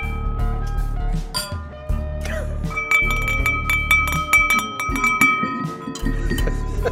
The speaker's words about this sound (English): Let's do a wee. Let's get the glasses ringing here. Come on.